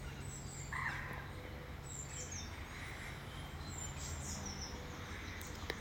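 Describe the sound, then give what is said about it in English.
Birds sing and chirp faintly over a steady low hum, with scattered high tweets and short whistled calls overlapping across a quiet outdoor ambience. “It's great if you can do this in nature, but if not, you can do it to the bird song here.”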